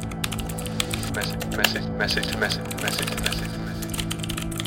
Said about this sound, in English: Your fingers went to the keys and even though every single cell in your body screamed for you not to, you typed a message to them.